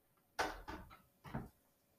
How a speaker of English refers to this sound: So just close the doors in here.